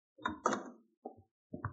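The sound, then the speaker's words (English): Several solid knocks on a wooden door as Mr. Bascom arrives, two quick raps followed by two more spaced apart, moderately loud, with no voices. “Bascom's at the door now.”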